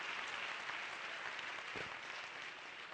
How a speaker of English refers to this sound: All of you workers, stand up, stand up. Come on, let's get a Lord hand clap for them. Every Friday night.